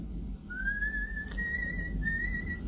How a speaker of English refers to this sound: The coachman is whistling.